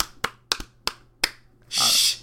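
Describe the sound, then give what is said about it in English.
A handful of soft, sparse, polite tennis-style claps, five sharp light pats at an uneven pace, followed by a breathy hissing shush that holds for about half a second. “Golf claps, tennis claps.”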